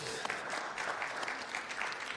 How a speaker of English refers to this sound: But that's the, we can clap for that, that's fine.